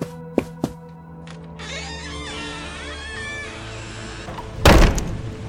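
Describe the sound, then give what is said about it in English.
A door handle clicks twice, the door creaks and scrapes as it swings for a couple of seconds, then it shuts with a loud slam as someone leaves. No one speaks. “Be sure to let the door hit you on the way out.”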